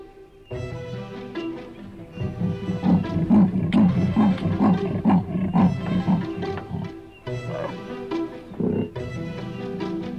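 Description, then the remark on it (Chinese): A tiger roars loudly in several long, rumbling bursts, with deep growling pulses between short pauses and no other sounds. “不只有食草动物需要条纹的保护，百兽之王老虎也是条纹的经典代表。”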